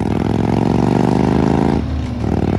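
An old Harley motorcycle with nice exhaust pipes rumbles loudly with a deep, throbbing idle, then its pitch briefly drops and lightens before the revving picks back up. No one speaks.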